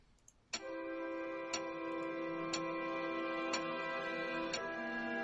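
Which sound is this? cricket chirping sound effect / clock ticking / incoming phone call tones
clock ticking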